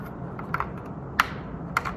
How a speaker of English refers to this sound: This is the Apple desktop mouse. One button, because why would you need any more? Physical trackball. And what's great is that this connects right here to the side of the keyboard.